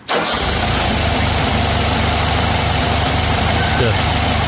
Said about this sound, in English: This is literally what my dryer has sounded like ever since I moved into this apartment.